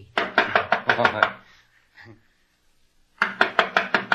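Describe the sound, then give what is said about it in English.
Two rounds of firm, rapid knocking on a door, about seven raps, a pause with a faint shuffle, then another quick series of six or so. Fairly loud, with no talking. “I'll knock on the door.”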